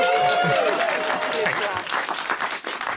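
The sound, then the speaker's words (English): The crew of the show The Cheap Seats applauding news that the minimum wage has been increased: a dense, steady burst of clapping lasting a few seconds, with some whooping voices mixed in, holding loud throughout before tapering slightly at the end. “That's the crew applauding.”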